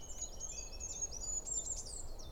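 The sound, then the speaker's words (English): A goldcrest, a very small bird, sings its thin, very high-pitched spinning song throughout, a fast run of tiny notes heard fairly faintly over a low outdoor rumble. “The goldcrest sounds like a little spinning song.”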